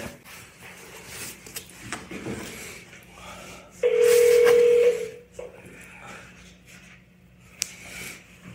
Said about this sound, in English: You have activated this emergency telephone.